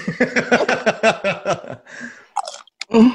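Someone crunches tortilla chips close to the mic, a quick, steady run of loud, brittle chews, followed by a brief pause and a few scattered crunches and rustles.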